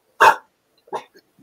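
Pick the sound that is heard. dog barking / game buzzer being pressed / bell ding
dog barking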